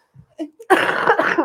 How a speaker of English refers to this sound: I have to actually cough really bad right now.